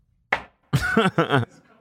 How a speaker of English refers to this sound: You know, we don't, let's knock on some wood.